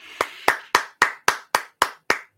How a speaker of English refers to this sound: So there's your clap.